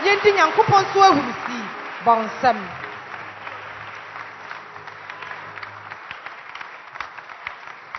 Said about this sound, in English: It's been good. Clap your hands and let's celebrate.